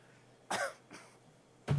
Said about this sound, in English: What was that? That was a cough.